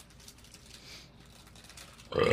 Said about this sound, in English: It wouldn't be Greased Pole without a belch. Without flatulence.